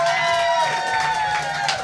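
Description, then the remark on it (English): An audience claps loudly and steadily for a couple of seconds, a dense wash of many hands with a few voices cheering underneath. “If we're pro touching the arms, clap it up right now.”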